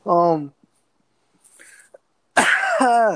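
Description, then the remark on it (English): A single loud, harsh cough bursts out after a brief voiced sound and a quiet pause, trailing into a strained vocal tail. “I'm very sorry. If I cough, it's probably really loud, so I'm sorry if when I do cough.”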